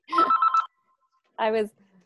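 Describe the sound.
A telephone rings with a junk call in one short, warbling trill that pulses about four times, then a person briefly speaks after a pause.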